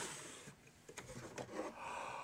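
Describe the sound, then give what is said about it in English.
Knocking on a wooden desk: about four sharp, dry raps in two quick pairs, fairly soft, over a faint breathy hiss with no one talking. “Did you just hear some knocking? Do we have knocking?”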